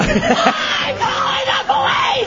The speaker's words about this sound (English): It's a crazy screaming lady.